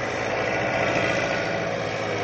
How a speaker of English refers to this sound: and soon all of the latest logging equipment is in action. giant diesel cats and wheeled log rollers maneuver around to pick up their loads or carry off what they've already loaded on.